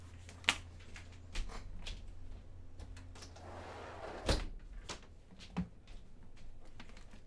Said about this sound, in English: Hold on, I got to close it. I got to close the door.